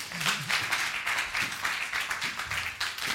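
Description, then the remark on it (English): An audience claps for Jesus together in a steady, dense burst of applause that holds at an even loudness for a few seconds, with a faint voice briefly audible underneath at the start. “I think you should clap for Jesus for that.”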